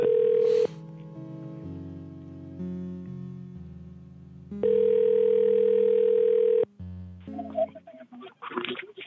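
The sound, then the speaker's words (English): A loud, steady telephone dial tone plays, interrupted by a series of lower dialing tones, then the dial tone resumes before giving way to brief clicks and rustling. “He's, believe it or not, he's still receptive to phone calls.”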